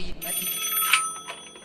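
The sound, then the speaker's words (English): A telephone rings with a steady, bright, high-pitched electronic trill that holds through the whole short moment, moderately loud, as a call is placed to the Yankees General Store. “I'm gonna make a phone call.”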